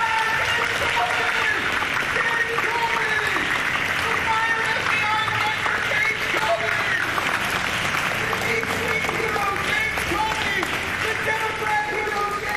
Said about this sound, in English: Here, James Comey is speaking somewhere. He comes in, and that is when Owen Schroyer starts adding his voice to the raucous applause that this big doofus receives wherever he goes by the clapping seals.